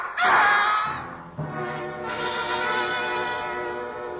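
A loud, high scream bursts out and cuts off, then a sudden sharp gunshot hits, followed by a dense, ringing wash of sound that lingers steadily to the end.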